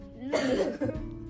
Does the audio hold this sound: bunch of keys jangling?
no